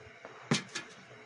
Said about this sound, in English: You closed the door.